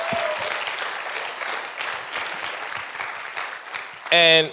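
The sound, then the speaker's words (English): A crowd applauds steadily for several seconds in thanks to two preachers and teachers, a dense wash of clapping from many hands, ending with a brief sustained tonal sound at the close. “I think we should just clap it up for them for taking it up.”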